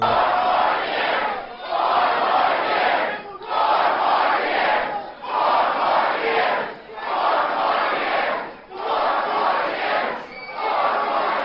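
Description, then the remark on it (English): A large crowd chants loudly in unison over a man speaking, repeating a short phrase in steady bursts about every 1.7 seconds with brief dips between each shout, sustained throughout. “So the crowd jumps in and starts chanting over him, huh?”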